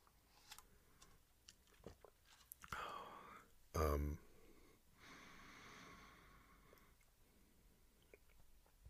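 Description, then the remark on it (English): Someone takes a quiet sip of coffee, with soft mouth clicks and breaths, a brief thump partway through, then a longer airy slurp. No one speaks. “I'm gonna take a little bit, another little sip of coffee over here.”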